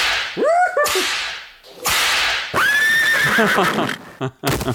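Sharp whip cracks land repeatedly on a horse in a video game, each followed by the horse's loud, shrill whinny; harsh, ending in a quick flurry of cracks with no talking.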